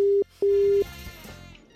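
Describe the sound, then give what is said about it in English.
An outgoing phone call's ringing tone, a call placed from a private number: two steady electronic tone bursts, a short one then a longer one, loud, followed by faint line hiss. “We might be giving you a call right now on private number.”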